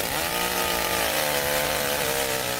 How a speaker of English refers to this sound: And then I started getting really fearful that something was going to happen, because here's some stranger, I don't even know who he is, with a live, active chainsaw running after me with it.